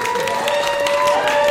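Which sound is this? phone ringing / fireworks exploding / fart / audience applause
audience applause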